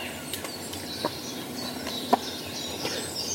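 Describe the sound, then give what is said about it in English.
A person briefly mimics a bird, giving a short, clucking chirp amid faint outdoor background noise and a few soft clicks. The call is quiet and isolated, with no talking around it. “I was being a bird.”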